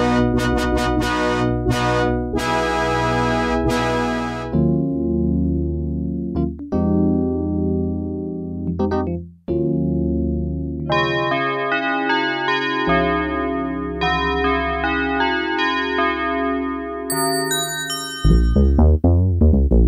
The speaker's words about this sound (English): These sounds come from the same device, the Yamaha DX7 synthesizer, one of the most important keyboards ever. Those sounds were used in a gazillion songs back in the 80s